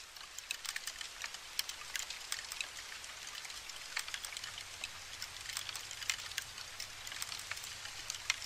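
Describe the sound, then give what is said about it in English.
Powder post beetles chewing wood: a steady, irregular patter of tiny dry clicks and crackles, like fine rain on a surface, quiet and continuous with no voices. “What you are listening to is the powder post beetle having lunch.”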